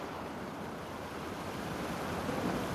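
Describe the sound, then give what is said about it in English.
Steady, soft rush of small ocean waves washing onto a sandy shore, a continuous hiss that swells slightly toward the end, heard alone with no voices. “And as you get to the shore where the ocean meets the sand, you see little waves coming up and down, up and down.”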